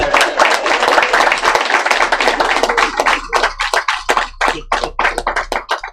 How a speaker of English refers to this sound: Hey, everybody, let's get a hand clap for that real quick.